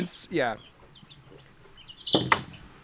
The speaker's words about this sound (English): Gwyn is recording in a room full of birds. Those are not a joke, listener. That's 100% real.